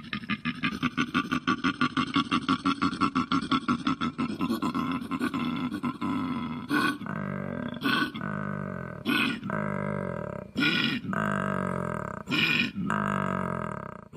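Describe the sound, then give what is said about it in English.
A koala's deep grunting bellow: a fast, rasping snore-like pulsing gives way to loud, low, belching roars that repeat in strong bursts, with no other sounds. “I've never cuddled a koala bear either, but that's what it was.”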